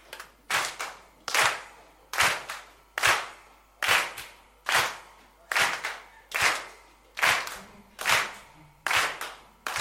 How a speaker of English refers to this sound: Is there anyone that still can clap hands? Just go after me. Okay, come in. We just want to clap so that we hear that people have got rhythm. Yes, come. Just hold on, brother. We just want to hear the hands being clapped first.